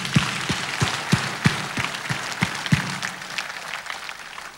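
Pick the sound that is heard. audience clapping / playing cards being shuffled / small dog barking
audience clapping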